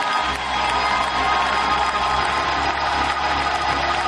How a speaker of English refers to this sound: Psalm 47:1 is clap your hands unto the Lord, all ye lands. And open up your mouth and shout unto God.